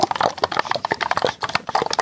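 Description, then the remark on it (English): A toy rattles and clatters as it is shaken hard, a dense run of rapid knocks and clicks lasting about two seconds with no voices. “Okay, I'm going to give you a shake.”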